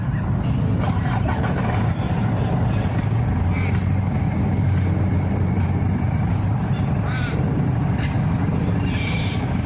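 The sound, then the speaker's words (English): A steady low rumble of passing traffic, heavy and continuous like vehicles rolling over a road joint, with faint bird calls chirping above it now and then. “Sounded like a crow, a cockatoo, traffic crossing a gap in the road, going over a bridge maybe.”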